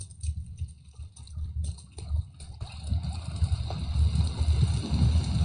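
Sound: rain sound effect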